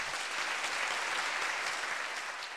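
A steady round of applause from a group fills the whole moment, a dense crackle of many hands clapping at once, fairly loud, with no voices breaking through.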